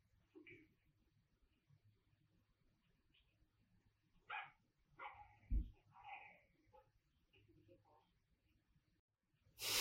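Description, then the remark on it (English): A dog in a scene with Elvira barks at a man in a short cluster of sharp, moderately loud barks and yips midway through, over a steady low hum, with faint muffled voices and quiet movement around it. “The dog knows what's up.”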